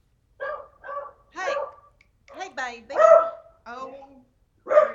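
A beagle barks and bays at a cat outside the window in a series of about six short, harmonic howling barks with brief pauses between them, fairly loud, with no other sounds around.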